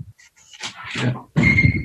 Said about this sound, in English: Fuck, wait, the door's ringing. Doorbell.